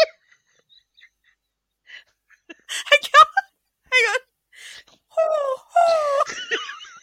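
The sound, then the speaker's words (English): A person imitates a pigeon's cooing with a string of warbling, wavering vocal coos, fairly loud, after a brief spoken phrase and some quiet pauses. “That's the noise a pigeon makes, right? Or is that a dove?”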